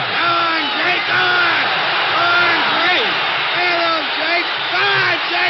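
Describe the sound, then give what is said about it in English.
A large boxing crowd at a LaMotta–Robinson bout yells and cheers nonstop as LaMotta's supporters sense an upset: a dense roar of many overlapping shouting voices that stays loud and steady throughout, with a slightly muffled, narrow-band quality. “The crowd sensed an upset, and LaMotta's rooters had something to yell about.”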